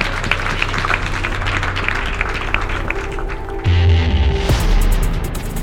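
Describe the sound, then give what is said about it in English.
A large audience applauds in a dense, steady patter of many hands clapping at once. Partway through, low sustained tones rise in and continue under the clapping to the end. “We're all out of time, so I want to give a warm round of applause.”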